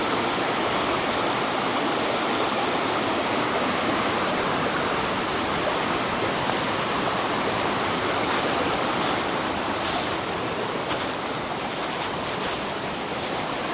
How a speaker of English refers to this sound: I don't remember if I've been through here where the creek has been so high. It's really nice. Is that too loud? It's so pretty.